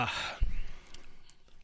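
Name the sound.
yawn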